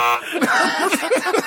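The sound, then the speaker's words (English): A short, harsh game-show wrong-answer buzzer blares with a flat, rasping tone for a fraction of a second, then gives way to snickering laughter and voices. “How you gonna buzz an answer I didn't give yet?”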